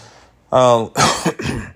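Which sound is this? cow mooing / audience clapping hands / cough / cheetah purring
cough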